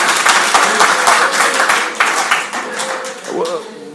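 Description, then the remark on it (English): A crowd applauds with dense, steady hand clapping that gradually thins out, while voices murmur and call out underneath toward the end. “You can clap hands for that because it's the truth.”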